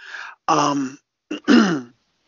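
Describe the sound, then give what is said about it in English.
A person clears their throat several times, a few short rough rasps followed by a longer, throaty grumble, with brief pauses in between and no speech. “I'm clearing my throat because I don't know how to really address the next topic, but I'm just going to jump into it and read an ESPN article that I have.”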